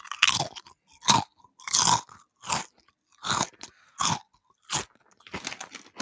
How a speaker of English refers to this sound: I could crunch the crisp and you can guess from the sound what crisp it is.